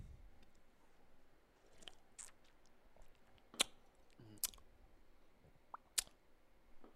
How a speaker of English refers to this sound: Is it carbonated? It's carbonated. Okay, I'm glad we didn't shake. Yeah. Okay, did y'all sip? Yeah, I got a good one. I got a good first one going. Woo!